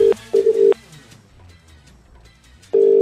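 A phone's ringback tone on an outgoing call to a prize winner: a steady mid-pitched double ring repeats, then pauses with faint background hiss before the ring starts again, clear.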